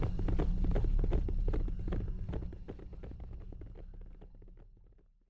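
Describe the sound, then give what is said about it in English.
Horse hooves gallop in a quick, steady rhythm over a low rumble, loud at first and then gradually fading as a rider gallops the horse out of the town of Bonita. “He jumped onto a horse that wasn't his and galloped out of Bonita.”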